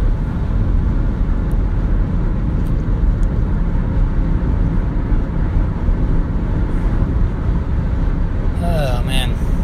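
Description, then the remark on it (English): A steady, loud road roar from inside a car cruising on the highway at sunset, with a semi truck ahead that it is about to pass, a constant low rumble throughout and a brief higher-pitched warbling tone near the very end. “The shadows are very long on the road. There's a semi in front of me. I'm going to pass him.”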